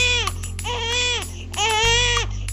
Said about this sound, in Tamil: வீட்டுக்குள்ள அந்த அத்தை தன்னோட குழந்தைய மடியில வச்சு தட்டிக்கிட்டே இருந்தாங்க. அழாதட செல்லும், என்னடா ஆச்சு பட்டு குட்டி, வயிறு வலியா, பசிக்குதா, எதுக்குடா அழுற அப்படின்னு கேட்டுட்டே இருந்தாங்க. ஆனா அந்த பாப்பா அழுதுட்டே இருந்துச்சு.